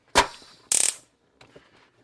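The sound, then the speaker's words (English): An electronic rat trap that counts its kills is set off: a loud, sharp snap, then a short burst of rapid crackling clicks, followed by a few faint mechanical ticks as it settles. No one speaks. “it reads 5 kills every time we set it off.”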